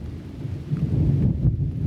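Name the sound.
thunder rumbling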